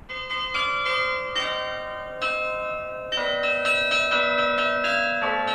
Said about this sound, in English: This is … by Chicago hip-hop artist …. Mixing church bells and hip-hop